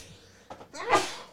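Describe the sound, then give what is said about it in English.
A single sneeze: a short sharp intake of breath, then a loud, voiced burst that trails off quickly, with no talking around it. “Bless you. Thank you.”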